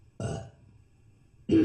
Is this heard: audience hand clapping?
no